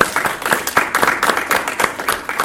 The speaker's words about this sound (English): So please applaud if you feel Storm is more obsessed with video games